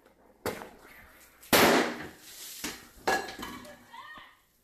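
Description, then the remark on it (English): A lit firecracker placed in a big pot of soapy water in a house sets off a sharp blast, followed by splashing and metallic clattering of pans, with a few more smaller pops and rattles trailing off into quiet. “he just was like, I'm going to light a firecracker and put it in a fucking big pot of soapy water”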